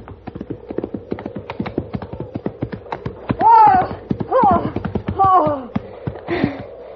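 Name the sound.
horse hooves clip-clopping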